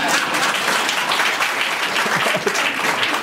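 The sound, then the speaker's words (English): An audience claps steadily for about three seconds in response to a speaker backing a Medicare for All public option, a dense, even patter of many hands at constant loudness with no voices rising above it. “I'm in the Medicare for All public option camp, generally an applause line in groups like this.”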